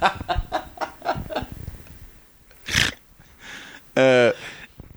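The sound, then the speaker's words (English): A person does a vocal rooster imitation, ending in a short, loud, strained crow, after a run of quick choppy vocal sounds and a sharp breathy burst. “But if you remove it, he starts making rooster noises.”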